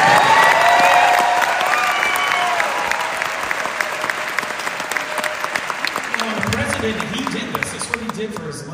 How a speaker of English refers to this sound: Can we give him one more round of applause, please?